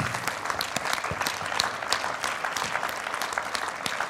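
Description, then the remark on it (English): A crowd stands and claps steadily in praise to God, dense overlapping handclaps forming a continuous, even wash of applause at moderate loudness with no voices. “In Jesus' name, would you stand to your feet and clap your hands to God in praise and give him glory and honor?”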